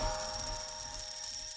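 A telephone rings with a steady electronic trill, its bright high-pitched tones pulsing continuously for the whole moment at a moderate level, with no one talking.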